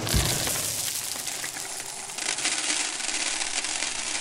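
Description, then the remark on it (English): A steady rush of marbles of different sizes pours out of a drum as it is tilted. It is a dense, continuous clatter of many small hard clicks, loud and unbroken for several seconds with no voices. “My goodness, that's a lot of marbles.”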